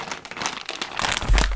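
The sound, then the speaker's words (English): Crinkling of the plastic packaging bag of an oximeter, a continuous burst of crackly, papery rustles with irregular sharp crackles, fairly loud and heard alone without any talking. “Some ASMR for you there. that's the bag it's in.”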